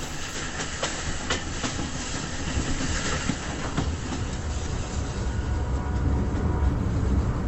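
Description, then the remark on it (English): A train rolls steadily along the track, its wheels clattering in a continuous rhythmic clickety-clack over a dense rumbling roar, loud throughout with no voices. “This train is the clicked passing of dreams.”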